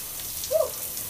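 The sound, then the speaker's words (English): Shower water runs in a steady hiss of spray as someone rinses off and washes off exfoliating gloves, with a brief, slightly louder splash or squeak midway through. No one speaks. “I'm sorry, I'll be all up in the shower.”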